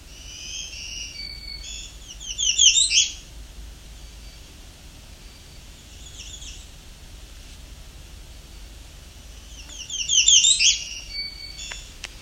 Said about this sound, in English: This warbler with the piercing call at the end is the American redstart. Ends with that. It's definitely an American redstart. However, the redstart doesn't always do that.